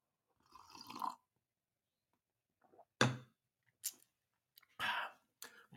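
An airy slurp as someone sips coffee, followed by a few quiet clicks and a swallow, with short silences between the sounds and no talking.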